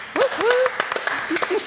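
Scattered, uneven hand claps from a small group, mixed with voices whooping and cheering at a higher pitch, for a brief burst of applause.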